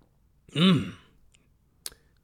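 A single slurp of hot coffee blends into a breathy, voiced exhale lasting about half a second, followed by a brief sharp click, then quiet.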